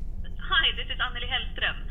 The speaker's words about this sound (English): your phone. I hear it.